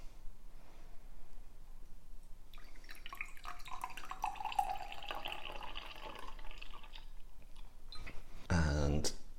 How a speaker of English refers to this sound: And I'll just pop the lid on the shaker so that I can strain that into my flute.